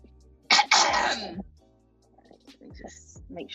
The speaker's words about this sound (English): That was disgusting. I don't know what you coughed up, but it looked like it was aggressive.